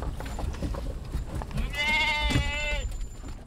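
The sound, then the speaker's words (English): A single wavering sheep bleat, from one of 12 sheep being driven in a Chrysler minivan with 2 people, rises clearly out of a low, rumbling background, lasting about a second before fading, with a faint murmur of voices around it. “Once we got going, it was remarkably quiet considering there were 12 sheep and 2 humans in a Chrysler minivan.”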